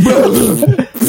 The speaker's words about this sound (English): Ladies and gentlemen, I submit to the Institute of International Scientists this woman has pneumonia of the vagina. Witness this cough.